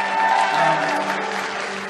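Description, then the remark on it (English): An audience at a church service claps steadily for about two seconds for a visiting pastor's wife, a dense, even wash of applause at moderate loudness with faint sustained tones underneath and no talking. “And you can clap for her too.”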